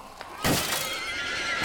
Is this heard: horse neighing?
yes